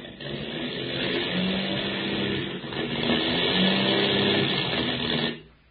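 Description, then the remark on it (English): A failing airplane engine with motor trouble over the Indian Ocean drones steadily, its low pitch wavering and sputtering slightly, then the roar cuts out abruptly near the end, leaving silence. No voices are heard. “We've got motor trouble. Hey, you mean this airplane's going to let us down in the middle of the Indian Ocean?”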